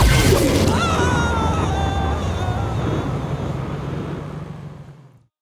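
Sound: car being smashed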